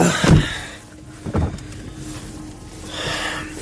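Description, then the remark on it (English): Someone climbs back into a car out of freezing cold weather and a door shuts with a heavy thump, followed by a second softer knock, then muffled rustling and faint wind-like hiss. No one speaks. “Let's hop back in this car before I freeze to death.”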